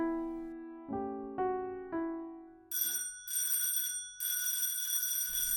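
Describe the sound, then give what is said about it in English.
A house's front doorbell, pressed hard, sounds four ringing chime tones that fade between strikes, then a loud, shrill electric bell rings in three insistent bursts, the last one longest. No voices are heard. “The doorbell rang out like a fire siren.”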